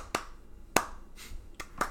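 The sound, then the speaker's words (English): Four or five sharp, crisp hand claps in a rock song land at an uneven pace over a quiet background, each one short and bright, with no talking. “Everybody loves clapping during rock songs.”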